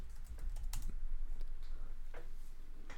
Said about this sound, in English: I'm typing.